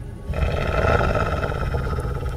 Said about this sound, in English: I dare not go out. I can still hear the wolf.